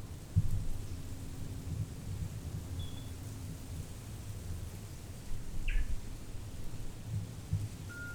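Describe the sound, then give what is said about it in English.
A few sparse, faint bird chirps sound outdoors in warm, dry San Diego, scattered over a steady low outdoor rumble, with no voices present. “Especially the birds.”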